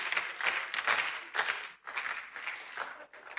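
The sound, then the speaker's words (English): An audience claps their hands to give God praise in sustained, dense applause, with a brief dip near the middle before the clapping carries on steadily. “clap your hands and give God praise.”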